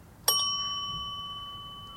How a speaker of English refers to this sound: And then you hear another sound. A bell.